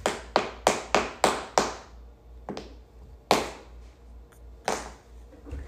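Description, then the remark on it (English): A toy hammer taps six times in a quick, even rhythm, then lands a few scattered, sharper knocks after short pauses. The hits are crisp, with no talking. “I'll take the hammer and I'll use something else.”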